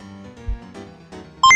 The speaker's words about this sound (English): Calculating computer activated. Computers. Beeps. Boops. Scoring complete.